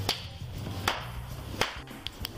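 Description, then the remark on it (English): A person, apparently a drug addict hanging out under some stairs outside an apartment building or motel, makes a handful of sharp, irregular slaps or claps that crack out one by one over a low background hum, with uneven gaps between them and no voices. “And now the crackhead is slapping his or her.”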